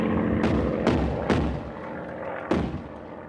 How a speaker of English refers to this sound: Overhead, an enemy plane had been dragging, drumming slowly round in the pool of night, drawing up bursts of gunfire. Nosing, pausing, turning, fascinated by the point for its intent. The barrage banged, coughed, retched.